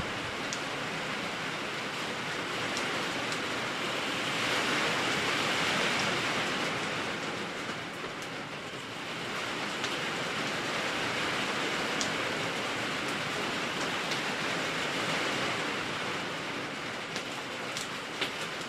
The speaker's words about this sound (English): Listen to that, it's raining good. All right, now here's the real rain. We got some wind too. You can't even hear the fire.